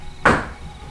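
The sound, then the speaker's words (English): A single heavy clack of heavier dice rolled onto a table for a strength check and landing on 21: one sharp knock that rings out briefly and fades with no further rattling. No one speaks. “These dice are better and a lot heavier. You can totally hear it when I roll them.”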